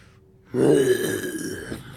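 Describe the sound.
A person gives a deep, rough growl imitating a bear, starting abruptly after a brief quiet moment and rumbling on for about a second and a half before trailing off.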